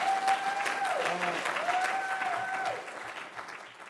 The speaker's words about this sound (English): I don't know why that person is screaming so loud, but I hope it's because they agree with this statement that I'm about to say.